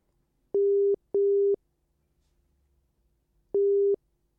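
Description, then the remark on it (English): An outgoing-call telephone ringing tone as a radio presenter rings a member of a band live on air on the Classic Hit Show, Liffey Sound 96.4 FM. It sounds in a double-pulse pattern: two short tone bursts, a long pause, then another pair starting. Steady, clear and alone, with no voices. “So hopefully now he'll pick up the phone.”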